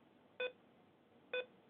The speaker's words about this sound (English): And that's a beeping sound.